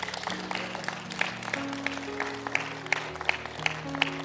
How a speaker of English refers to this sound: Come on, guys, give a God a hand clap.